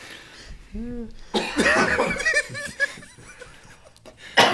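A close, loud coughing fit: a run of harsh, raspy coughs in quick succession, broken by wheezy breaths and a bit of laughter, ending with one more sharp cough.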